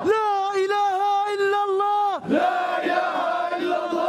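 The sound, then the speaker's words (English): A protest crowd in Hebron in the West Bank chanting loudly "There's no God but Allah" and that Aruri, the killed Hamas leader, is beloved of God: one long, sustained, wavering shout gives way abruptly to a dense mass of voices calling out together, steady and forceful throughout. “This is the sound of protests in Hebron in the West Bank.”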